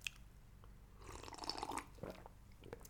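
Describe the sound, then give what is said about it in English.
A wet slurp of someone sipping water, a brief burst of liquid and mouth sounds lasting about a second, followed by a small swallow and quiet breathing. “Quick sip of water. Water break, boss.”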